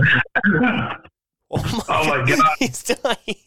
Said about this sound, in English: there it is. I knew it was coming. The coughing attack is here.